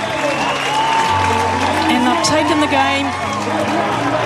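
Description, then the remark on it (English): A hockey crowd cheers and applauds loudly and continuously as the New Zealand women's hockey team, the Black Sticks, win gold in their sixth match of the campaign, a dense roar of voices and clapping with shouts rising out of it, steady from start to finish. “The New Zealand women's hockey team, the Black Sticks and the players and the crowd.”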